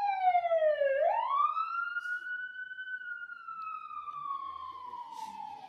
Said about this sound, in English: I am now going to pause and let the sirens, ambulances, whatever, go by, because whether you can hear them or not, they're annoying me.